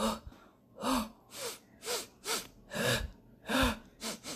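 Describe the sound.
A person imitates a bear sniffing and panting as it walks in circles around a tent at a campsite: a quick run of about eight breathy, snorting huffs in a steady rhythm, fairly loud, with no talking.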